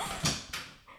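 A Shrek lamp is accidentally knocked over by a producer: a quick series of sharp clattering knocks, three brief bursts spread across about a second, fairly loud against a quiet background with no talking.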